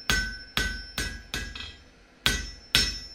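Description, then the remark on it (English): Ringing hammer blows of a blacksmith on metal, six sharp strikes in a steady rhythm with a short pause before the last two, each leaving a bright metallic ring that fades quickly. “When dawn broke, the smith woke and thought he'd dreamt the whole thing, until he felt the handle of the hammer curled tight in his grip. He then got to his feet and set to work.”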